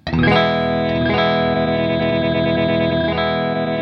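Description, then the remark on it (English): A bright, sustained chord run through a digital delay pedal with its time set longer, its repeats spaced out, stuttering and chopped into a choppy, glitchy pulse. It plays loud and steady, with no talking. “Oh, it's spacing it out. It's like chopping yeah. and glitching it out.”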